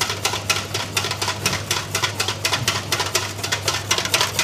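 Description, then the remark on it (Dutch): Rapid, steady clicking and scraping of a whisk beating homemade mayonnaise in a bowl until it turns thick, a brisk even rhythm of sharp ticks throughout, with a low hum underneath and no talking. “Maar als je even goed doorklopt.”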